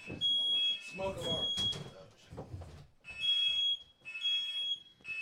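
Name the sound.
smoke alarm beeping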